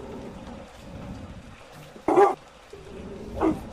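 Two short dog barks, the first sharper and louder, the second softer about a second later, over a low steady background hum with no talking.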